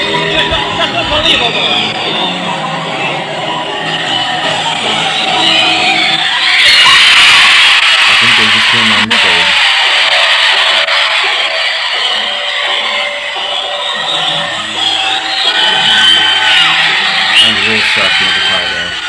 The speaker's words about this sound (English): The amount of like screaming from those gals. Trying to see. Okay. It's like non-stop cheering.